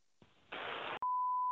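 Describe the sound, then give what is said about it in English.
A burst of loud static hiss cuts off abruptly, then a steady, clear electronic phone tone sounds alone and unanswered, loud, lasting until the end. “Man, ain't nobody answering the damn phone.”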